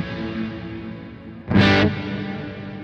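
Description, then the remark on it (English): A distorted electric guitar rings out with a huge, washy reverb (decay time 3.7 seconds, room size 8, a little pre-delay, mix level 55%), a sustained chord hanging in the space before a louder, brighter strum bursts through midway and then fades back into the lingering tail. “And this is a really large reverb.”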